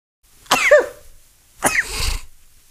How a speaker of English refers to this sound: Oh, I feel a sneeze coming.